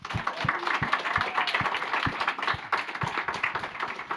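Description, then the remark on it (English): A crowd applauds steadily, many hands clapping at once in a dense, even patter with sharper individual claps standing out, sustained for several seconds without voices. “So, can we just give a round of applause for everybody?”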